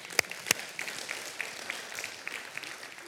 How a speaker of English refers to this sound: Everybody give Ethan a round of applause.